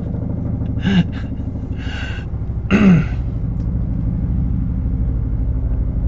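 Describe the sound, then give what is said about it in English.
A Border Patrol helicopter drones overhead, its flight path passing directly over a house on the final approach to an airport, in a steady, low, throbbing rumble that lasts the whole time, broken twice by short throat-clearing sounds. “That helicopter is a Border Patrol helicopter.”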